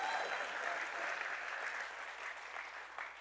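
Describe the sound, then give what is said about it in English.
An audience claps together in a dense, steady wash of many hands, holding for about three seconds before easing off slightly toward the end. No voices are heard. “Y'all are supposed to clap every time I say my love.”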